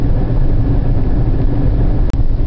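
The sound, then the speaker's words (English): Steady low-pitched rumble of an Oldsmobile Alero rental car driving, a continuous road and engine drone heard from inside the cabin, loud and unbroken apart from a brief dip near the end. “This is a rental car because I'm getting my car fixed.”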